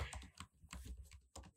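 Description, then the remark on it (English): Rapid, uneven key clicks from a computer keyboard being typed on, a steady patter of taps with brief pauses, fairly quiet and with no voices. “Like, I'm typing right now.”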